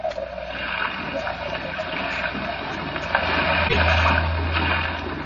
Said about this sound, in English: Unfortunately, Mr. Bartell, I'm not much of a sailor, and as the wind was blowing hard and the sea racing, I'm afraid I wasn't a very intelligent companion.